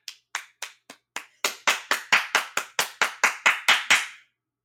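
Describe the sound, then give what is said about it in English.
A steady run of about eighteen sharp hand claps, starting softer and becoming louder and fuller halfway through, with no voices. “Please clap.”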